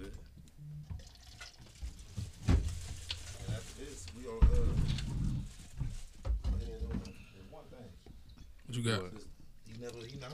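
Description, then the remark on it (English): Tequila pours and splashes into glasses, with a few clinks and knocks, while people talk casually over the pouring. “So we pouring these drinks up. It's a tequila.”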